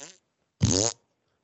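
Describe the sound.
A loud, buzzing fart noise blown with the mouth, lasting under half a second, preceded by a brief fainter snippet. No talking accompanies it.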